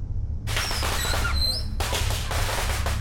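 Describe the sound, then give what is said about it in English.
Fireworks set off aboard a Zeppelin airship erupt in a loud barrage of rapid crackling pops with shrill whistles streaking overhead, a brief lull, then another dense burst of crackle over a low rumble. “What are you doing setting off fireworks on the Zeppelin?”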